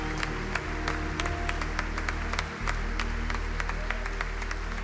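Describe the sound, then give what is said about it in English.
A church audience applauding together in praise of God during a service, a steady dense wash of many hands clapping at once that carries on throughout at a strong, even level, with a low hum underneath. “Let's applaud our great King, shall we, together.”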